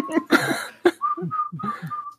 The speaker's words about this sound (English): Now you're making me laugh and I can't whistle anymore. Why is it so fucking catchy?